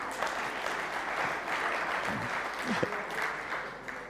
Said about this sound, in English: Give him a clap.